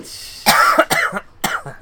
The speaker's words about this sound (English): Okay, I'm good. I got the coughs out of the way. I was trying to wait.